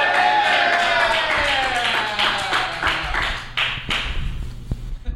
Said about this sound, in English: I got that thunderous applause. Thank you.